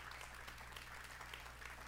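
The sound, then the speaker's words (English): A large crowd applauds the fathers on Father's Day, a dense wash of many hands clapping at once with no pauses and no voices rising above it. “I want us to give them a round of applause.”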